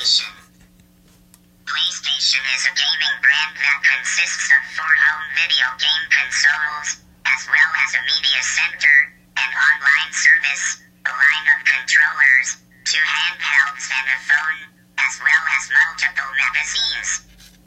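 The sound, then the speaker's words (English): A phone's voice assistant reads out an answer to a question about what the PlayStation is, through a small, tinny speaker, speaking in several short phrases separated by brief pauses, with a faint steady hum underneath. “So that is PlayStation. That was my phone.”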